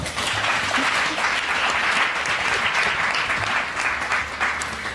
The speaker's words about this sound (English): And if you could please give a round of applause for our fantastic panel.